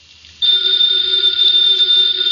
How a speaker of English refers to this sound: Ladies and gentlemen, that phone bell means exciting adventure.